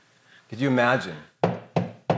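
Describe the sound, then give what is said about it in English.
A short voiced sound is followed by three firm knocks on a door, evenly spaced, each a sharp rap that rings briefly before the next. “He walks, who knows, it could be 1,200 miles from Rome, it could be 120 miles from Ephesus, walks over, because he knows that this is right for him to do, seeking reconciliation, but needs the help of Paul, and he knocks on the door.”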